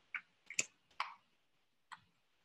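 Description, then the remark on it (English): A handful of quiet, crisp card snaps and flicks, irregularly spaced over a couple of seconds, as a deck of cards is shuffled before three cards are drawn. No voices. “Okay, we might just keep shuffling and I'll pull all three cards and then we can go through them.”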